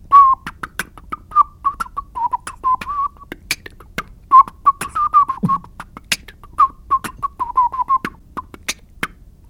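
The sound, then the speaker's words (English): A melodic whistle wavers up and down while sharp percussive beatbox hits and clicks pop around it in a quick, steady groove, fairly loud, with no talking. “And I've been trying to incorporate whistling into beatboxing recently, which sounds like.”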